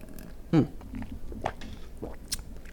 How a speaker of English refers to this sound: Let me take a sip of this fucking juice right quick.